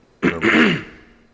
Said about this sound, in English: Maybe I should lean away from the microphone when I clear my throat. I haven't decided to do that yet.